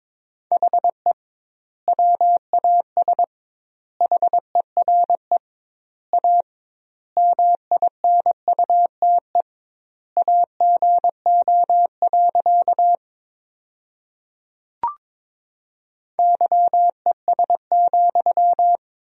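Morse code beeps on a single steady mid-pitched tone, keyed at 22 words per minute with double word spacing, sending sentences built from the top 500 words, in word groups separated by short pauses, with one sharp click partway through.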